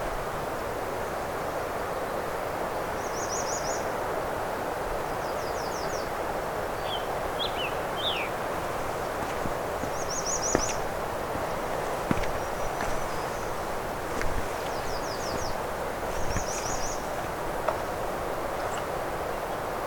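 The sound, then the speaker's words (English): A scarlet tanager gives short, burry call notes, repeated every couple of seconds over a steady wash of outdoor background noise, with a few faint twigs snapping. “This isn't really scarlet tanager habitat, but it does seem to be a migration point for them.”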